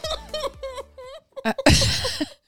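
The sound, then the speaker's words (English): A few short, voiced gulping sounds lead into one loud, explosive outburst that blends a burp, a sneeze and a cough into a single noisy blast, then trails off. “Did you just burp, sneeze, and cough at the same time?”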